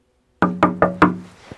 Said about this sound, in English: Chapter 1, A Knock on the Door.